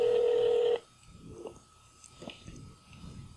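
A loud, steady electronic telephone tone from a phone call to a man who has not yet answered sounds for under a second and cuts off abruptly, leaving quiet clicks and rustling over a faint, thin lingering tone.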